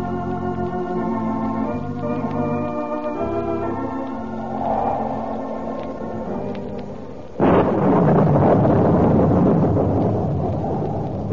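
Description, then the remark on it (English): On a stormy night in Los Angeles, orchestral music fades out and a sudden loud crack of thunder breaks in, followed by a heavy, sustained rumble that rolls on with a wash of storm noise. “Stormy night in Reina de Los Angeles, and none except those with urgent business dare leave their haciendas.”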